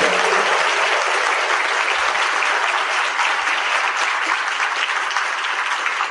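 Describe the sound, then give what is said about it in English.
Sustained audience applause for the class of 2012, a dense, steady wash of many hands clapping at an even loudness for several seconds, with no voices rising above it. “We will recognize them individually later in the program, but right now, if you will join me in giving our class of 2012, who are right here in the middle, a round of applause, please.”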